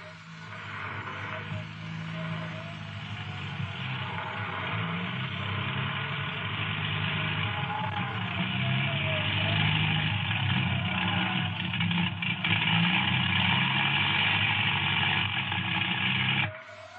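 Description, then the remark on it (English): A steady, droning propeller-plane engine hums continuously as the plane circles the airfield, holding a fairly constant loudness with slight swells before cutting off abruptly at the end. No voices are heard. “Plane approaching, sir. Plane circling the field.”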